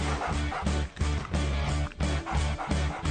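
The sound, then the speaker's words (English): An Australian cattle dog barks and yips, loud and insistent, in a rapid string of repeated bursts broken only by two brief pauses. “Let's listen to what they do in their lives, Australian cattle dogs.”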